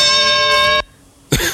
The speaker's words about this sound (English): That's the versus bell start, and for some reason it has some type of weird compressor on it that's making it go up at the end.